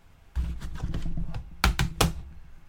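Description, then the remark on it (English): Dry clicking like a computer mouse from an office door lock being locked: a soft run of rapid taps, then three sharper, louder clicks in quick succession, with no voices. “Our lock sounds like a mouse click.”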